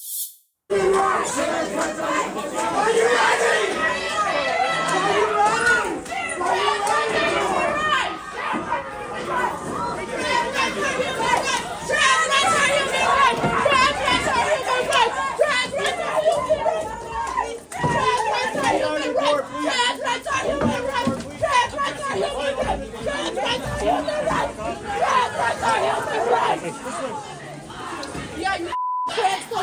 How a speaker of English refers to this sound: Footage captured amid the chaos shows Riley running down the hallway while being chased by this violent, screeching mob. Watch.